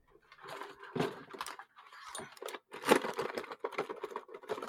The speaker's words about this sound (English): I'm just pouring myself some King Fling flakes. They're brilliant. I swear to God. They've got little crowns in them. Did you hear them? They're made of metal. You've got to chew real hard.